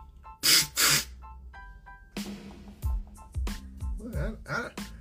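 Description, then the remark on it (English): A voice imitates a blowtorch with two quick, loud bursts of breathy hissing, followed by animated talking with scattered vocal sounds. “This bitch got a blowtorch?”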